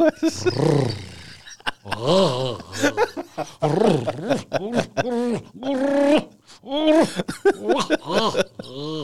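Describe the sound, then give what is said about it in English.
A voice imitates a lion, letting out a series of drawn-out, theatrical growls and roars with swooping pitch, loud, in short bursts across the whole stretch. “So you be the lion?”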